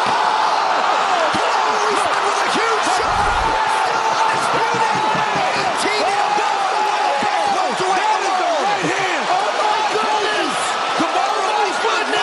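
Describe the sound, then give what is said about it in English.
A packed arena crowd at an MMA fight roars in a sustained, chaotic eruption at a knockout, countless voices yelling and cheering at full volume for the whole stretch, with a brief heavy thump early on. “The knockout with Kamaru Usman knocking out Masvidal, it should sound just like utter chaos, just like this.”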